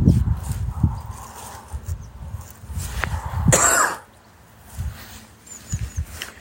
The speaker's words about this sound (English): Cough hasn't disturbed your morning or evening.